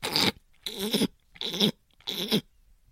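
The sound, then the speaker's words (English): Four harsh, raspy bursts of someone clearing and scratching the back of their throat, evenly spaced with short silent gaps between them, rough and fairly loud with no talking. “It's like clearing, you're like itching the back of your throat.”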